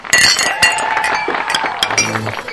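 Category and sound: household object, glasses clinking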